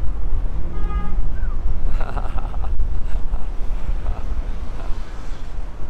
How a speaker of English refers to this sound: Man, is that ever windy?